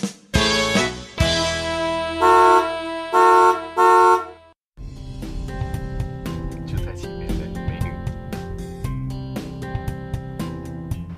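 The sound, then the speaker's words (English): Heard from inside a car: loud car horns outside honk in a quick series of short, sustained blasts, three in close succession, followed by a dense, continuous wash of busy traffic-like noise with faint voices underneath. “And this is the first time that I'm doing an interview in a car.”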